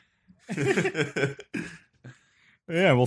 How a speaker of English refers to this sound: Yeah, I'll do that just for you. Sneeze and cough.